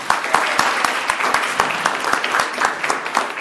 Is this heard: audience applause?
yes